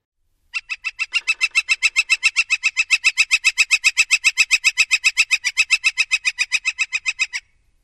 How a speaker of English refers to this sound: Now let's talk about their rolling rattle. Northern Flickers make a loud rolling rattle with a piercing tone that rises and falls in volume several times.